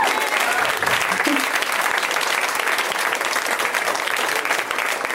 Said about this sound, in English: You guys, it's a hilarious stand-up comedy show. You should just continue to clap. Feel relaxed. Go ahead and clap. We should clap.